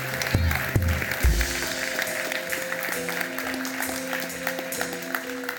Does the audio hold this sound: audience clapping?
yes